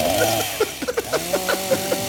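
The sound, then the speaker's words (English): A voice imitates a chainsaw, with the choke pulled out, revving and running as if to cut an elephant in half, a steady buzzing drone broken by quick rhythmic sputters over about two seconds, moderately loud. “hand me my chainsaw so I can cut the elephant in half.”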